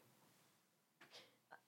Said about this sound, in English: I'm literally coughing now and I'm dying.